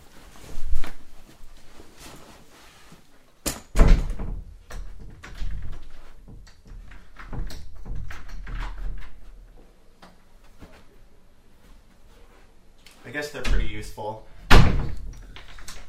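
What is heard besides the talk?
door opening and closing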